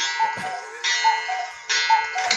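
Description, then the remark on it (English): A cuckoo clock sounds three times in quick succession, each cycle a bright two-note call over a busy mechanical clatter, fairly loud with no voices. “So, there's part of me that thinks, like, I would love to have a cuckoo clock, and another part of me that was like, I would murder someone if I had a cuckoo clock.”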